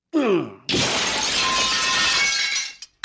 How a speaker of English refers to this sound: I'd have gone back into the mirror and you'd never been bothered with me anymore. But you busted it. I got no place to go now, kid. No place to go.